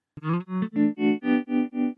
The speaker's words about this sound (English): Mono, sine wave, tremolo. Sounds great, man. So obviously you can affect the rate of that, but I'm going to leave it there because that's quite pleasant, to be honest.